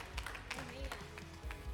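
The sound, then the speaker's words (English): A church audience claps together, giving the Lord praise for those who made a decision today, with a steady patter of many hands and some low thumps, while voices talk and call out over the applause. “Come on, let's put our hands together and give the Lord some praise for those who made a decision today.”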